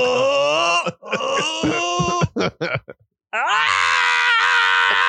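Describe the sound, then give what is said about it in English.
A voice imitates how Hitler might scream, loud, strained screaming and groaning: a long wavering moan breaking into choppy grunts, a brief silence, then a sustained high-pitched wail, loud. “You think he just screams?”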